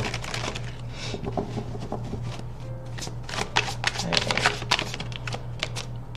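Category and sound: household object, shuffling tarot cards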